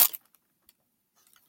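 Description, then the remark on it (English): A single short, crisp bite into coffee cake, followed by a few faint, sparse clicks of soft chewing, with no talking. “No, but I do have some coffee cake, so continue.”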